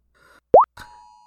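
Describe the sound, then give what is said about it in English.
Virgil knocks an object over on a side table: a short hollow plop that rises in pitch, then a sharp tap and a thin, lingering ring that fades out. No voices. “And Virgil is trying to knock over everything on my side table.”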